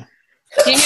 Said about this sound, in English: Bless you.